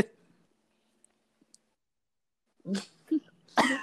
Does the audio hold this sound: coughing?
yes